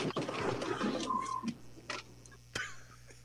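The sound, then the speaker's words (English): Tires give a thin, drawn-out squeak amid scuffing and rubbing noises, followed by a few softer chirps and a sharp knock, over a steady low hum with no talking. “You can just hear the tires squeaking, and he's keeping his composure.”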